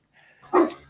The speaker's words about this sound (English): So I got somebody else go while the dogs stop barking.